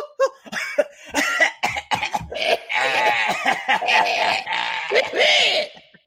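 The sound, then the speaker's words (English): A woman's loud coughing fit: a rapid run of harsh, choppy coughs, then strained, wheezy vocalizing that could be laughter mixed in as the fit goes on. “She just got a coughing fit.”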